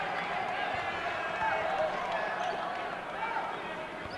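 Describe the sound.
A basketball crowd boos in a Bronx cheer as the first foul on Chattanooga is called with 2:44 to play in the half, a loud, steady wash of jeering voices that holds for about four seconds, easing only slightly toward the end.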